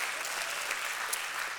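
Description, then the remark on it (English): A church audience at Life Point claps for the church's volunteers in steady, dense applause. It is a continuous wash of many hands with no voices standing out, holding an even level throughout. “All of the volunteers at Life Point that make this church amazing, I want to give you a round of applause.”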